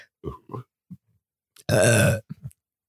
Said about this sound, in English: Burp.